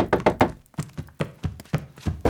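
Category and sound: household object, knocking on a door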